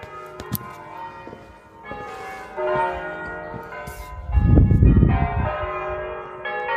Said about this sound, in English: Okay, I'm going to keep recording because I don't know if you can hear these bells. I'm going to take the sheet off. The bells are ringing. I'll just open the door here and see if we can capture that.